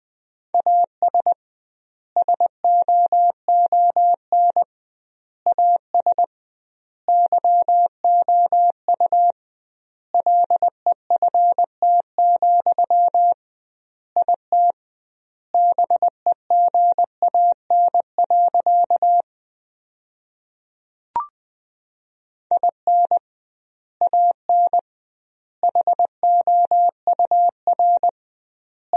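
Morse code sent at about 20 words per minute with doubled word spacing, sending sentences built from the 400 most common words: a steady mid-pitched tone keyed into rapid short and long beeps, grouped into words separated by clear pauses, with one brief click partway through.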